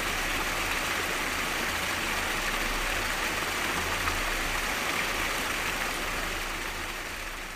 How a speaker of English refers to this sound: And maybe they just want the sound of rushing water and waterfalls. So let's take a quick listen to something very relaxing.